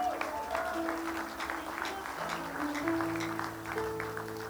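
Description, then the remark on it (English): An audience claps steadily throughout, a dense rattle of many hands at an even level, while sustained keyboard chords hold and shift underneath. “If you want to clap, clap well.”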